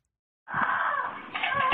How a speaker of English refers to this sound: It's a blood-curdling scream, and it's coming from inside this home. Police respond after a neighbor calls 911 to report a woman crying out for help.